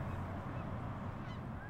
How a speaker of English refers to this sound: Competing with Canada geese flying overhead during this outdoor interview